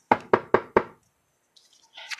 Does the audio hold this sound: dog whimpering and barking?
no